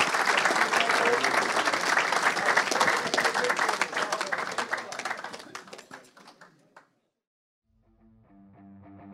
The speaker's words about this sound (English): Well, look, we'll move on to the next group of players. So can we all give a big round of applause, please,